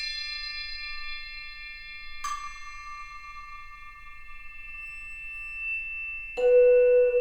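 Struck bells ring out and sustain in a slow musical passage, with two distinct strikes a few seconds apart; the second is lower and louder, its tone lingering steadily. No voices.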